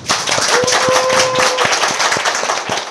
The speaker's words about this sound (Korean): 박수 치고 1부 마칠까요?